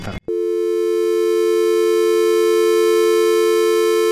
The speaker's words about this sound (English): But I loved, you know, being able to hear the actual dial tone.